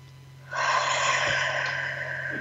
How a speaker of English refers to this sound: Take a breath in through the nose, out through the mouth, like through a straw. Beautiful. Take another breath. Expand your belly, see how big you can make it.